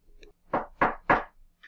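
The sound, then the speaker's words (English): Three firm knocks on a door in quick, even succession, fairly loud, with faint short sounds just before and after. “You hear that? It's me knocking.”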